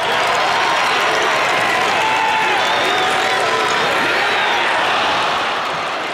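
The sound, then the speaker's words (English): A loud, steady roar of crowd cheering and applause fills the whole stretch, a dense wash of voices and clapping with scattered whoops rising above, easing slightly at the end. “That reminds me of the cheering.”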